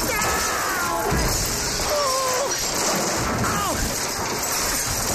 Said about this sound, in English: Sir, which model is it? Which model bulldozer? It was a Caterpillar. Yeah? D6. D6. And it's out of control. Hold on a sec. I'm crashing through somebody's house.